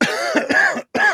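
A close, loud fit of coughing: a rapid string of harsh coughs, a brief pause, then one more rasping cough, with no talking.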